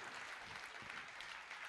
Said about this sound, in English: Would you give a hand clap for these people as they come right now? Because they want to share this with you.